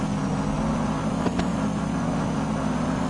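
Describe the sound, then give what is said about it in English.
A car engine in a racing video game drones steadily and loudly for the whole stretch, a low, constant hum with a faint higher whine and a couple of quick ticks midway; no one speaks. “So where the hell are all the cars?”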